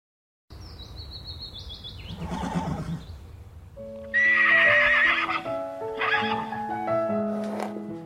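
A horse whinnies loudly several times, with long wavering neighs over the steady clip-clop of hooves, and no one speaks.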